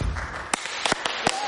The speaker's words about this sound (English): Should we give you a clap? Yeah.